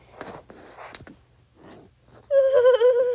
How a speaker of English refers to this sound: Eep. I think that's an alien dog.